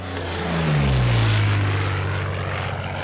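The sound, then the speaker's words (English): A propeller airplane drones loudly overhead, its low engine hum swelling in and then sliding downward in pitch as it passes, steady and unbroken with no voices. “He jumps courageously into some bread dough, shapes it into an airplane around him, and begins to fly off and away.”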